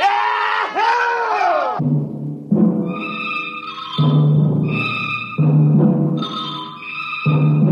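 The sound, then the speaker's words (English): Several men on Mars shout and whoop in celebration in loud, overlapping bursts, their rowdy cheering rising and falling over several seconds, boisterous. “The Earth laughs and shouts, echoing across the empty Martian sands.”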